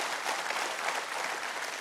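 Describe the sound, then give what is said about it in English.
A church audience claps hands together during a sermon, a dense, steady wash of applause that holds at an even level throughout with no voices on top. “Let's clap our hands for that, man.”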